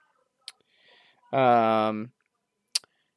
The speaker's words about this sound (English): It's another page of stuff. I'm clicking over to that now.